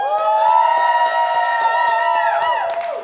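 An audience cheers loudly and steadily for everyone involved with Capcom, a sustained chorus of whooping voices with scattered claps, the pitch sliding downward as the cheer fades near the end.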